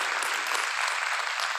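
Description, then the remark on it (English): An audience applauds to honor a group of people, with steady, dense hand clapping that stays even in loudness for the whole short stretch, with no voices over it. “So can we just give them one more hand clap, just honoring them here.”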